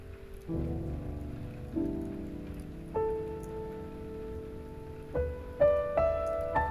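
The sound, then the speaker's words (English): Gentle rain patters steadily in a soft, even hiss, heard beneath slow, sustained musical tones that shift from note to note, with no voices present. “Feel the gentle drops of rain fall upon your chest.”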